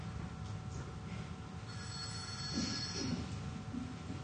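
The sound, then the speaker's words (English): A new mobile phone rings faintly, a high electronic tone rising out of a low, rumbling background noise for a couple of seconds before fading back. “It could be mine, actually. I did put it on time. It's a new phone.”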